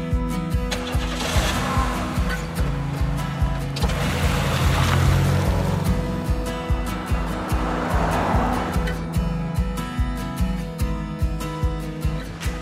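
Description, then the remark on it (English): A rented motorboat's engine drones steadily in Largrith Sound on a ride through the North Cut mangrove channels, its low throbbing hum pulsing evenly while water rushes and splashes against the hull throughout, with no voices. “We just rented a boat. We're gonna take this boat through the North Cut, these mangrove channels.”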